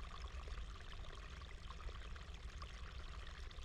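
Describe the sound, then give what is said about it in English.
Steady running water from a stream in a disturbed habitat grazed by cows, a continuous bubbling trickle with a dense, even wash of sound and no voices. “But it's also healing, like what's with this water.”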